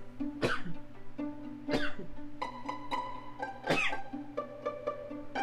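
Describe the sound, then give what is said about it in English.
A person sneezes three times, sharp and explosive, a second or two apart, each brief and somewhat muffled after moving the microphone away from their nose and mouth, over a steady humming tone in the background. “I'm going to sneeze here, so I'm going to move the mic away from my nose, my mouth.”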